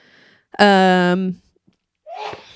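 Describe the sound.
A single loud, strongly voiced sneeze rings out for under a second, high and tonal, then a short breathy rush of air follows after a pause of silence.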